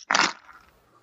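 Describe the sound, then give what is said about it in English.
A handful of 14 dice, rolled together for a tabletop wargame attack, clatters loudly in one sharp burst, then rattles on in a quick, fading patter of small clicks until it settles. No one speaks. “Roll all 14 of them together if you want to.”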